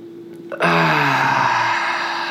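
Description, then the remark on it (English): A single deep breath taken as part of a guided deep-breathing exercise, fairly loud, with a sudden airy rush that holds steady for well over a second. No one speaks. “So let's go ahead and take a deep breath.”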